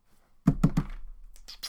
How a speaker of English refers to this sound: Sorry, hammering on the desk, I realised was probably quite loud.